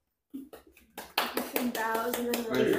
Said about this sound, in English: Let's give another round of applause for Gashoon and Harriet, one of our own witch light hands, who is feasting today upon her with her eyes upon the carnival as a guest.